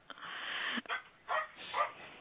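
A 16-year-old dog barks a few times in quick succession, a drawn-out first bark followed by shorter, hoarse ones, moderately loud, with no talking, in a quiet, serene spot in Washington State.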